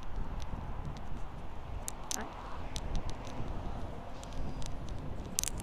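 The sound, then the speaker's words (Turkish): Strong wind roars steadily across the microphone in a dense, low rumble, with scattered sharp clicks and taps on top and a single brief exclamation from a voice. “Şu an hayvan gibi rüzgar esiyor ve yani zorlanıyor olabilirsin beni duymakta.”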